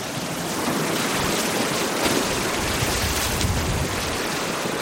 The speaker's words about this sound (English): I watch the waves devour the beach and begin pounding the bluffs, cutting deep notches into the base. Then, one by one, the bluff faces slide off in whole sheets.